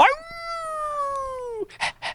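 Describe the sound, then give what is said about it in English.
A man imitates a wolf with one long, steady howl that sags slightly in pitch before cutting off, followed by a few short, breathy huffs, loud. “a man turning into a wolf”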